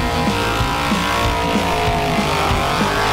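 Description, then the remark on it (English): A V8 car doing a tyre burnout at Summernats Slam, the Best V8 Burnout winner, Brett Kilby in Hammer Time: a loud, continuous engine roar with a rough, pulsing low rumble and a dense hiss of spinning tyres throughout, with no voices. “Winner of Summernats Slam Best V8 Burnout, Brett Kilby in Hammer Time.”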